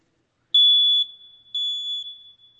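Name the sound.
smoke alarm beeping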